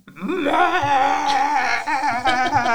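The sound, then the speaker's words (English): A person imitates the loud meow of a cat named Party, the meow she uses when someone is at the other end of the house: one long, drawn-out, high, wavering vocal cry that rises at the start and holds steady for nearly three seconds, with no talking around it. “And then she's got one if you're at the other end of the house and it's basically...”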